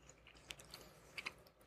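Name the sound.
chewing a gummy candy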